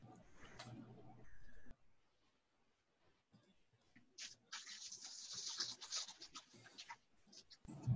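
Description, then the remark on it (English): An extra fine fountain pen nib scratches steadily across paper in a dry, papery rasp lasting a few seconds, preceded by a brief faint voice and a short burst of noise. “I got my extra fine fountain pen to finally fucking work.”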